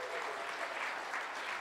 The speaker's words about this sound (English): Would you guys give him a big New Covenant round of applause and love?